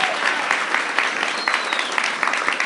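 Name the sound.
audience applause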